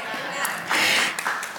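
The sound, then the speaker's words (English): A light, scattered Independence Day golf clap from a City Church audience, a handful of soft, uneven claps with a faint murmur of voices underneath, brief and subdued. “Thank you for that overwhelming Independence Day golf clap.”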